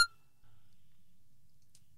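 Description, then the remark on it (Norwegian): A short, sharp electronic voicemail beep from a mobile phone answering service sounds right at the start after a prompt to leave a message, bright and tonal, then cuts off, leaving only a faint low hum with no talking. “Vennligst legg igjen en beskjed etter pipetonen.”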